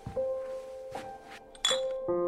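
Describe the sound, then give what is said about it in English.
Glass beer bottles clink together as one is picked up from a counter, with about four bright knocks whose ringing tones hang on between them. No one speaks. “Roland got up and went to grab a beer on the counter.”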